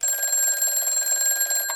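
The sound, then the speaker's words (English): A telephone bell rings continuously with a rapid, metallic trill, loud, with no voices; it is a call from Mr. Doty to Mr. Ramsey's office. “Answer the phone.”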